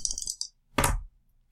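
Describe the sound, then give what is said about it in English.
Two dice clatter and rattle across a hard tabletop in a quick flurry of small clicks, then a louder tumbling knock, with one last sharp click at the end. No voices. “All right, let's just start by you rolling two of those dice again.”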